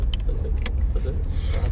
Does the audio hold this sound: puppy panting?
no